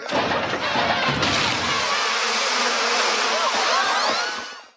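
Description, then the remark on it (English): A dense, loud swarm of killer bees, released from a box that cracked open in a cartoon, buzzes continuously, a thick droning hum that fills the whole stretch after a brief thumping start, with no talking. “That buzzing sound at the end is... Well, okay, the box that cracked open in the cartoon there was actually labeled Killer Bees, not Murder Hornets.”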